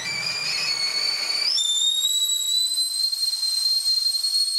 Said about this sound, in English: As she stood there, a kettle on the stove behind her whistled.